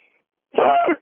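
A man clears his throat once in a single rough, half-second burst, fairly loud, after a moment of near silence. It has a coughing edge but no words.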